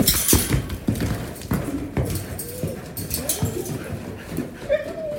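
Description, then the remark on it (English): A wild mustang horse kicks and thrashes as cowboys work with it: heavy, irregular hoof thuds and scuffling clatter over a steady rough background, with a brief high squeal near the end. “They said they'd never seen a horse kick and fight so hard.”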